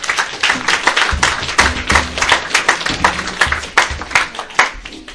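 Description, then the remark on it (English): Audience applause at an intro course event as a former course guest comes up to speak: a dense crowd of overlapping hand claps, steady and fairly loud throughout, with sharp individual claps standing out from the continuous patter and no voices. “So can we give her a round of applause as she comes up?”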